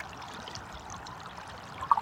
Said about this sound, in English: What about like a happy little stream tumbling down the side of a mountain?